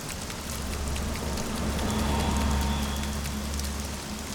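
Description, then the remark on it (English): Steady rain falls throughout, a dense hiss of drops pattering on hard surfaces with a low rumble underneath, even with no voices. “The rain began to fall once more as Declan fled the scene.”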